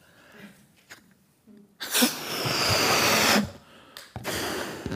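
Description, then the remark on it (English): Someone blows air into a balloon in two long, rushing breaths, the first about a second and a half, the second shorter, after a few faint soft sounds. “So we're going to put some air in here because then the balloon really does come alive, doesn't it?”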